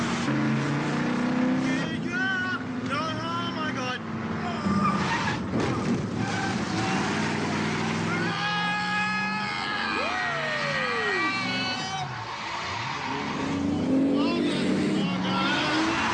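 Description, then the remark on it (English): A car engine runs steadily throughout, its drone shifting in pitch as it revs while driving, with people talking and exclaiming excitedly, urging the driver to stop and slow down, over the continuous engine noise. “You're gonna wreck this car.”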